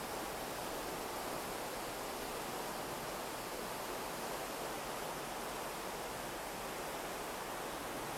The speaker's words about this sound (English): Always listening to the river, the flow, the movement.